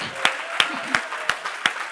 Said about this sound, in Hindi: उस पास्टर के लिए हम धन्यवाद दे सकते हैं, ताली बजा सकते हैं।